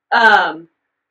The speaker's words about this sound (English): What's your question for yourself? Why am I yawning so much?